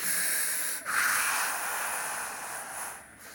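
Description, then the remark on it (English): A voice imitates heavy breathing down a phone line: long, hissing, airy breaths with a brief catch between them, fairly loud and steady, with no talking. “and you're on the phone with someone and it's like, you're just listening to each other breathe?”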